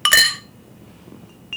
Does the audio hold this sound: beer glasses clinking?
yes